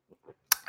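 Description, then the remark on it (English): Someone sips a long black coffee: two faint, soft mouth sounds, then a sudden noisy slurp and a longer, louder airy sip, with no talking. “I'm just going to have a sip of my long black while you guys do that.”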